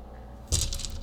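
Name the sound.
dice rattling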